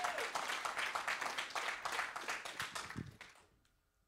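Audience applause from a room full of people, steady dense clapping that carries on for about three seconds before thinning out and fading to near silence.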